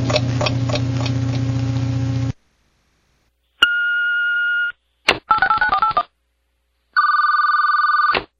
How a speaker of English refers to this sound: You have 15 seconds from the sound of the beep to state your name, phone number, and name the 50 states.